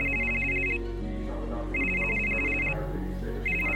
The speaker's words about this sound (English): at that moment, he got a phone call on his cell phone, and it was from a Christian businessman he knew.